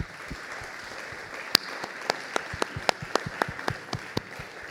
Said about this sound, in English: So can we just give him a quick round of applause, Anthony Hughes.